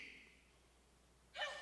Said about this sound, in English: Bless you. That is a delightful sneeze. Can we talk about that for a bit? That was a precious sneeze.